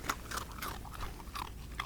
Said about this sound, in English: Nothing like the wild sounds of nature. The whippet crunching a gravy bone.